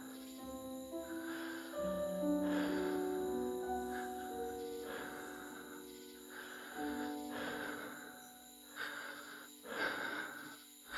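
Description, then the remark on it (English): Slow, steady breaths of two people rise and fall together in a regular rhythm, soft, with sustained tones of quiet background music humming underneath. “And our breathing is lining up.”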